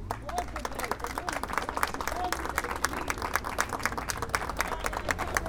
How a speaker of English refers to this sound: Let's give another round of applause for Tamisha Torres-Walker.